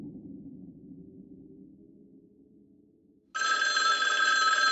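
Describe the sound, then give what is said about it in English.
A low, muffled rumble gives way abruptly to a loud, bright telephone bell ringing continuously for the last second and a half. “I don't want to tell you what to do, but you're listening to this on your phone, and your phone is ringing.”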